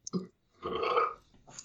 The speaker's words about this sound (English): Was that a DOS boot burp, but for whiskey?